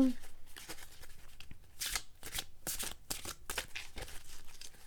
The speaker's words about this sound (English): All right, I was trying to get that other card out of there. It was kind of stuck in the box. All right, let me go ahead and shuffle.